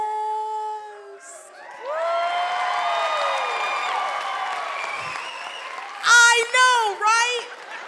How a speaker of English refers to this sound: Let me tell you, they had the same reaction. Everybody was clapping and screaming.